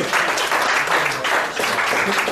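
Steady applause from a crowd fills the whole clip, a dense, even patter of many hands clapping at once, loud and sustained without pauses, with a faint voice or two underneath.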